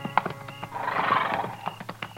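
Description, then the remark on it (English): At a buffalo hunter's camp on the prairie around dusk, a horse gives a long, wavering whinny that swells and fades, framed by sharp hoof clops on hard ground before and after. The sounds are clear, with no voices. “He had mules. This man's got horses.”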